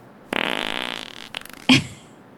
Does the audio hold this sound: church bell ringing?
no